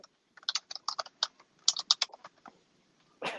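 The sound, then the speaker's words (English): Rapid clicking of a computer keyboard, a quick irregular burst of keystrokes, ending with a louder rustle or thump. No one speaks. “Fucking keyboard. I can't help it, bro.”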